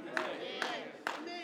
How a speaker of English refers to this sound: Come on, some of y'all clapping because that's what your testimony has done for you.